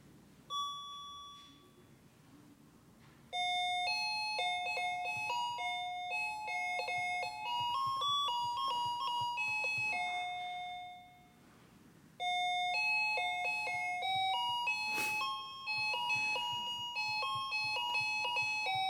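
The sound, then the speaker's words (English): A cheap, very lightweight little electronic keyboard made of plastic plays a bright, thin, beepy melody of steady sustained notes in two loud phrases separated by a brief pause, with no one talking. “This little keyboard is just about the cheapest piece of junk that I have ever seen.”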